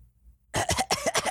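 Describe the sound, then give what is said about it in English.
After a brief moment of quiet, someone breaks into a rapid fit of several harsh coughs in quick succession, each burst loud and raspy, with no talking. “You hear one of the voices begin to cough.”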